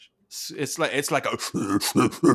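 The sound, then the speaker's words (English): A voice imitates a guttural koala grunt: a run of about seven harsh, raspy, throaty pulses in quick succession, fairly loud and rough-edged, with no other sounds. “One is like a very guttural, like hardcore metal, like what's the word I'm looking for that like boars and pigs do?”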